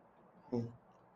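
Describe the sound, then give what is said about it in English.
A single quick gulp of water, swallowed in about a quarter second against a quiet background. “excuse me, get some water.”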